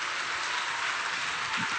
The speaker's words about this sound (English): Oh, let's clap our hands and give God great praise.